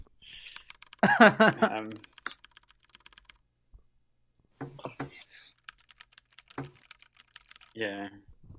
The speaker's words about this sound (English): I can hear it. I have a MacBook Pro. And they're fairly squishy. I don't know, it's just a thing. You're just violent with your keyboard. I just type furiously. Are you sure you don't use a hammer? I mean, my fingers are hammers.